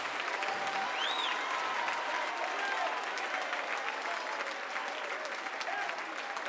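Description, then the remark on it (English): A church audience claps and shouts unto Jesus for several seconds, a dense, even wash of applause with scattered voices calling and whooping over it, holding loud throughout. “Oh, clap your hands and shout unto Jesus.”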